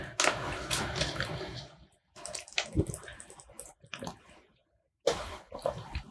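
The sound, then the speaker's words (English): Wet sipping and swallowing from a drink of water, coming in three bursts separated by brief silences, fairly loud and with no one talking. “Got to take a sip of some water there.”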